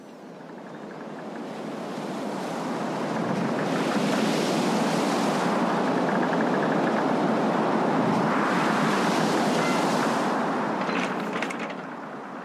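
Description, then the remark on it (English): Rough sea waves surge and crash continuously, building in intensity, with gusty wind buffeting the microphone throughout. No voices are heard. “Not calm seas. Oh, it's pretty rough today.”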